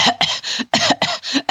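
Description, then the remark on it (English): A voice imitates a passenger coughing on an airplane, about half a dozen quick, harsh, breathy coughs in rapid succession, fairly loud, with no other talking. “and there's a person behind him, and the plane hasn't taken off yet, and everybody's kind of getting their seats, and there's a guy behind him coughing, a lady behind him coughing.”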